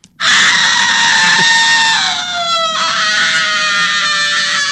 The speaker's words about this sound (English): But that's the great death cry of the witch from Snow White. And it was also used again in Sleeping Beauty when Maleficent got it mm-hmm. at the end.